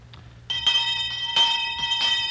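A school handbell, used as a town crier's bell, rings with bright, metallic, sustained tones, struck again and again at an uneven rhythm, each clang layering over the lingering ring of the last.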